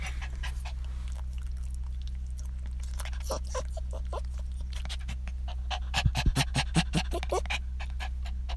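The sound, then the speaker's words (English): A dog named Dum-Dum, anxious in a car parked at a park, pants rapidly and unevenly, with quick breathy huffs and a few whiny, strained breaths, over a steady low engine-like hum; the panting grows louder and more frantic toward the end. “You want to hear what panic and discontentment sounds like?”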